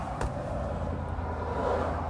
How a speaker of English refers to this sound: Or you need to turn on the car. Start engine. Boop.